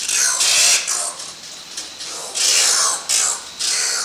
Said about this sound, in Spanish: Este es el extraño chirriar del guácharo, el cual pasa toda su vida en la oscuridad. Estas aves viven en cuevas de Trinidad y Sudamérica y salen solo por las noches en busca de comida.